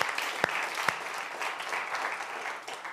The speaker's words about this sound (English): And there has been so much extra work that has gone into this service. So can we have a round of applause for all the staff and volunteers?